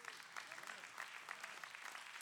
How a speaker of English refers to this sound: How many thank God you're a big giver? Clap your hands. Come on. And if you're not there yet, how many are going to be a big giver? Clap your hands like you're going to be a big giver. I got to hear you.